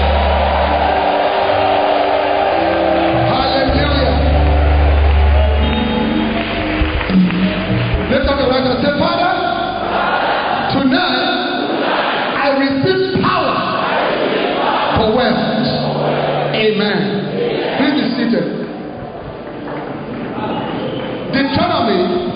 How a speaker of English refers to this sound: I want you to clap your hands and give the Lord a shout.